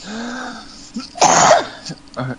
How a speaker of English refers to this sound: damn it, talking about that album made me cough a lot.